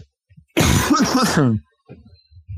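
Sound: cough or throat clearing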